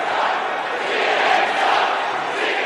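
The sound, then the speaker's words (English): A large crowd at a Donald Trump rally chants and shouts together in a loud, dense, steady roar, with their words blurred into one continuous wash of voices and no single speaker standing out. “Crowd's pretty fired up. What are they saying, though, in the background”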